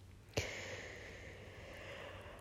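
A quiet, drawn-out yawn that opens with a short sharp catch of breath, then a long breathy exhale with a faint vocal tone, over a steady low hum.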